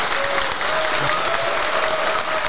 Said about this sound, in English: here we are, our first live event of the year. Everyone, give yourself a round of applause.